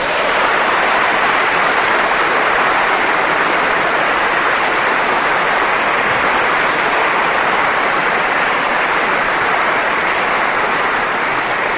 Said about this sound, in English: I think we owe them a round of applause for that.